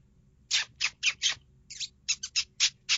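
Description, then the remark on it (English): A lip squeak call used to lure coyotes while hunting: about ten sharp, high-pitched squeaks blown by mouth in an uneven, quick rhythm, imitating a distressed small animal, with no talking over them. “Give me that the lip squeak one more time so I can imprint it.”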